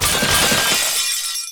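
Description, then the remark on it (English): Loud shattering of mirrors hit by bullets from two pistols, a dense burst of breaking panes with bright crackling fragments that ring out and taper off over about a second and a half. “All the mirrors shatter and break, leaving Bastille out in the open.”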